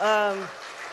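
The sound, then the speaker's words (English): A voice trails off as steady audience applause carries on at an evening Lunar New Year celebration, a dense crackling patter of many hands clapping at moderate loudness that continues alone once the speaking stops. “So first and foremost, give yourselves a round of applause.”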